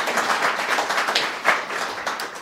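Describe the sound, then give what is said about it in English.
On election night, an audience applauds two guests: many hands clapping together in a dense, crackling wash that holds at an even, fairly loud level throughout, with no voices on top. “And I really appreciate that and want to applaud them for both being willing, not knowing the outcome, to be here.”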